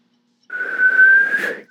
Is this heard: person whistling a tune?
yes